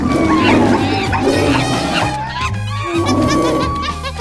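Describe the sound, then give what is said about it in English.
A loud, dense chorus of zoo animals at the Great Lake City Zoo calling and roaring on cue all at once, overlapping squeals, grunts and bird-like cries sustained over a few seconds with no pauses. “Nailed it this time, animal friends. Great job roaring on cue.”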